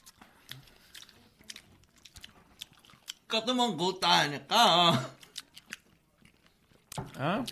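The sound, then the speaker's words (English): Soft chewing of something dense, chewy and a little bitter, with small irregular mouth clicks and squishes, followed by a couple of drawn-out voiced murmurs between bites. “Take a bite.”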